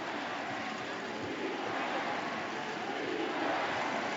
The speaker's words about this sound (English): As you hear the defense chant, this crowd